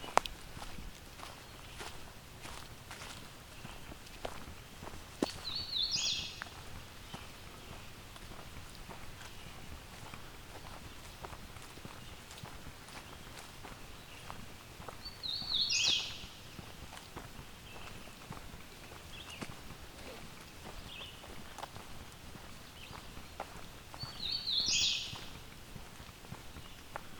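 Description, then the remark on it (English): A hooded warbler sings three short, bright whistled phrases spaced about ten seconds apart at the Fisher Tract at 8:30 a.m. on June 21st, fairly clear over steady footsteps crunching along a path. “So it seems this year I'm having no trouble finding hooded warblers.”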